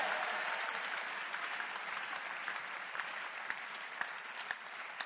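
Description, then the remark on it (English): A crowd claps for Jesus, clapping steadily for several seconds, a dense wash of overlapping handclaps with a few sharper individual claps standing out, fairly even in loudness throughout. “Are you ready to clap for Jesus?”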